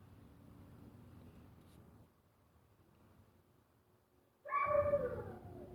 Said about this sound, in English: That fucking dog is crying. It's fucking next door. I don't fucking know what's going on with him.